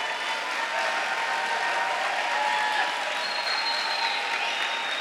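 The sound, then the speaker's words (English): Sustained applause from an audience at a church sermon, clapping for the preacher's wife: a dense, steady wash of many hands clapping at even loudness for about five seconds, with no voices standing out above it. “Clap for my wife. Clap for my wife.”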